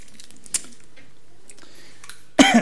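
A single sharp cough from a preacher bursts out loud near the end, following a stretch of near-quiet with a faint click earlier on.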